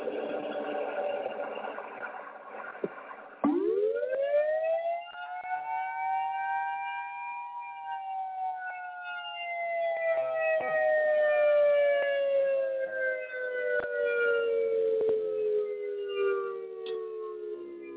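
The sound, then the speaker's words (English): A civil defense siren in Mattawan, Michigan winds up sharply into a loud, steady wail, then holds and slowly sags in pitch over many seconds, with no one talking. “Here's the sirens. Mattawan, Michigan.”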